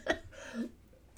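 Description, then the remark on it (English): A quick sip of celery juice: a soft slurp followed by a brief swallow, quiet and over in about a second with no talking. “Let me have a sip of my celery juice.”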